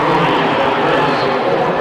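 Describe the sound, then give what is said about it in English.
A loud, steady roar of the energetic Blackman crowd at a women's basketball game, dense cheering and chatter blending into a continuous wash of noise with no pauses. “Couldn't hear the whistle either with the Blackman crowd, so energetic down here.”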